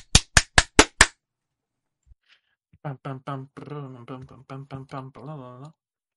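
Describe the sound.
Five quick, sharp hand claps in an even, brisk rhythm, followed after a short pause by a person talking.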